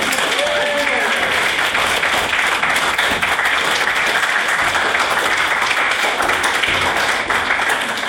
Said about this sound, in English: I can't help but feel that that round of applause was not proportional to what I did.